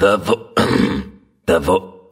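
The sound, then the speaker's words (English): Someone clears their throat: short rough vocal bursts around a longer, gravelly rasp, followed after a brief pause by a couple more harsh, voiced hacks. “So, did you just come in here to clear your throat?”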